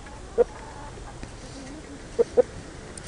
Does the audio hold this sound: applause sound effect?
no